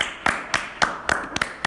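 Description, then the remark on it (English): Steady hand clapping as an ovation for Yankees player Stanton after his RBI triple, about seven sharp claps in an even, fairly quick rhythm, with one pair landing close together near the end. No one speaks. “And then let's give him a Stanton ovation.”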